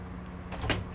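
A room door opens as someone comes in, with a brief rustling swish and a soft bump, about a second long, over a low steady hum and no talking.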